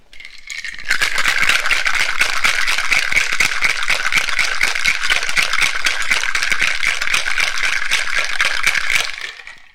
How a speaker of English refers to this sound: Dribble a little bit of that in, and we'll get the lid on the shaker and give it all a shake.